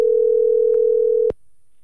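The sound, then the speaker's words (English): A single steady electronic ringing tone from an outgoing phone call to wish someone a happy birthday plays for just over a second, then cuts off with a sharp click into quiet line hiss. No one speaks. “Birthday call to make right now. Here we go. It should be calling.”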